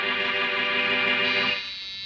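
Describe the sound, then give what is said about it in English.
A doorbell rings at Boston Blackie's apartment with a steady, bright, buzzy tone held for about a second and a half, then it drops to a softer lingering ring. No voices are heard. “As we return to our story, Boston Blackie and Mary Wesley are in Blackie's apartment. And the doorbell rings.”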